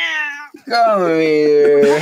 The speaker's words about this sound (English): Sorry, I gotta turn the noise gate off because a cat wants to say hi, and we have to let the official mascot of the cat to say hi on the fucking car show.